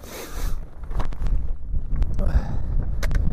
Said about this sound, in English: So I expect it to get very windy any second now.